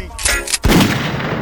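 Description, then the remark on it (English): A single loud gunshot effect: a brief rushing hiss leading into a heavy, booming blast that rings out in a long reverberant tail, standing alone without talk. “Show them what gunshot do to them.”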